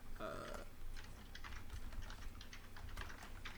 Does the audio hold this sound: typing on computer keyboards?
yes